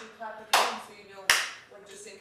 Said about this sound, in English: It's clapping to sync it so that we know where to sync or shit.